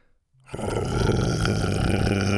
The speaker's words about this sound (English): Buck was growling now. He chomped onto the blanket and started thrashing it.